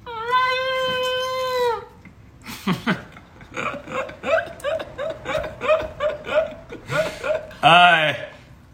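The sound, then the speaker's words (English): A person imitates a dolphin with their voice: a long, steady high-pitched squeal, then a rapid run of squeaky chattering clicks, ending in a loud rising-and-falling squeak. “What sound does a dolphin make?”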